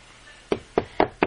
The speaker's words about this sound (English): he knocks on the door, and the door opens up. Hello? Anybody home? Nobody answers.